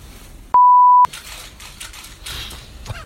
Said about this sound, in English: Glad the beep machine was working there. Oh, I thought it was you going.